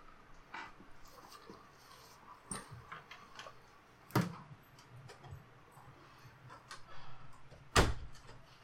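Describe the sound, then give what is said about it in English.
A room door being pushed shut, with two sharp knocks of the latch and frame a few seconds apart, amid faint shuffling and light clicks. “All right, everyone's up now, so I'm closing my door for a little more silence.”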